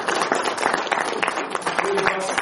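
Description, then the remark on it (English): An audience applauds steadily, with many overlapping claps forming a dense, continuous patter at an even loudness for a couple of seconds. “So we can give him a round of applause.”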